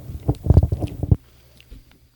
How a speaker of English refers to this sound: Just chew right in the mic, man. Fucking right. It almost tastes like there's real apples in it.